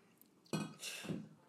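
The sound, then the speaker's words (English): Glasses clink together once in a toast, a bright ringing tap, followed by a brief softer clatter. No one speaks. “Let's take a cheers to episode 6.”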